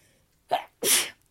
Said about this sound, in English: I have to sneeze, do I?